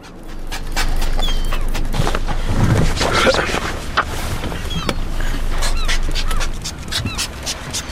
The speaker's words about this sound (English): we've just spotted a group of hungry sea lions in a feeding frenzy, feeding on herring